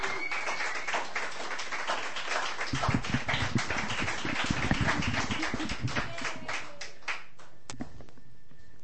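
A room full of people claps steadily for several seconds, a dense patter of many hands that swells in the middle and then thins out and fades near the end.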